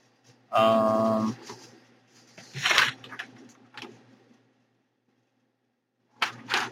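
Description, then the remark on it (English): Paper being shuffled: a short buzzy tone first, then a few crinkly, papery rustles in quick bursts, a quiet pause, and another brief rustle at the end. “You guys can hear me shuffling the paper.”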